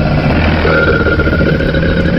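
A crocodile's deep, rumbling call, a steady low growl that holds at a constant loudness for about two seconds with no pauses and no voices.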